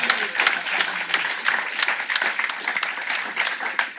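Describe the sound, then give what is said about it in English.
A live event audience applauding their hosts at Level 39, a dense steady patter of many hands clapping, sustained for a few seconds with no speech over it. “So please, can we have a round of applause for our hosts at Level 39?”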